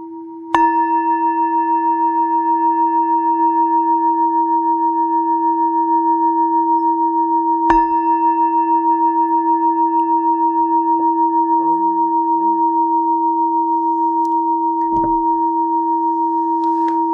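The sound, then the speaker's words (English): A gong is struck three times to end a meditation session, roughly seven seconds apart, each strike adding to a steady, humming resonance that never fades between hits. No voices are heard. “So I'll ring the gong three times. You can just wait till the last chime, and then we can end the meditation.”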